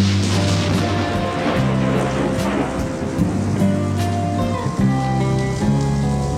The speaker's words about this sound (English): Like, I was actually thinking about how the sound effects, how that thunderclap just comes in right at the right time, and it totally sets the mood.